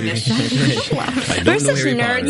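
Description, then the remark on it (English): A voice imitates the snake language from Harry Potter, producing drawn-out breathy sibilant hissing with voiced, speech-like harmonics for a couple of seconds, fairly loud. “Snake language. Yeah. It just sounds like a lot of S's.”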